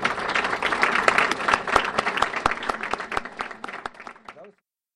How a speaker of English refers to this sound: So let's give him another hand of applause.